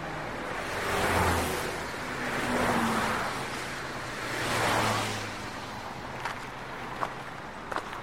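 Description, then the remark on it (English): Cars whoosh past on a bridge one after another, three swelling pass-bys over a steady roar of traffic, followed by a few light taps and clicks. No one speaks. “We walked to the edge of the bridge and waited for the cars to pass.”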